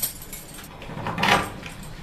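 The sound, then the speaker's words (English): Metallic jangling of keys and a clunk as a heavy security door, one of at least four being passed through, is unlocked and swung open, with a brief swell of mechanical noise in the middle and no voices. “The security is very tight. There's at least four doors we're going through.”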